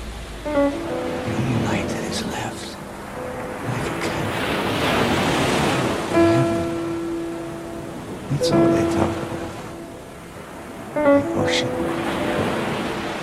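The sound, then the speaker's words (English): Ocean waves surge and wash onto the shore in a steady, rolling roar that swells and fades, with brief bursts of a voice cutting through now and then. “The ocean. And the sunset.”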